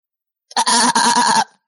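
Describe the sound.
A person imitates a goat's bleat, one loud, nasal, wavering call lasting under a second, with no other sounds around it.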